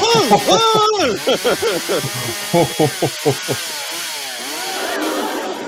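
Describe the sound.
A voice imitates a chainsaw revving: a run of loud, rhythmic buzzing bursts with rising and falling pitch, then fading into a softer, drawn-out drone.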